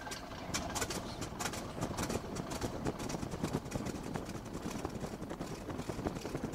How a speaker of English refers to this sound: Now that right there is just the sound of seven cylinders coming to life. This particular aircraft has a Continental radial engine on it.